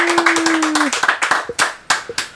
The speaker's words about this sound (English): Nice applause.